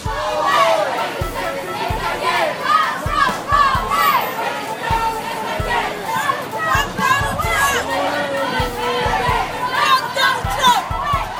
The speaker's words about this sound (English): The mind-blowing large crowd forced cars to make way for them on the street while they marched and chanted their emotions to the Trump Tower on Fifth Avenue.